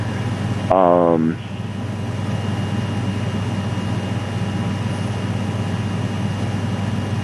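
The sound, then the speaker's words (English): A steady, loud mechanical hum from an air conditioning unit right next to the speaker drones throughout, with a brief burst of voice near the start. “Sounds like you're sitting right next to the air conditioning unit.”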